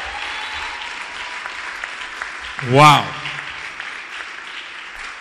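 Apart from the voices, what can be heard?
audience applause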